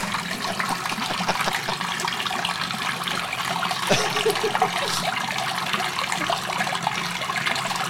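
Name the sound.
toilet flushing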